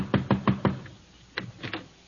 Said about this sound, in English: I'll go ahead. Knock on the door.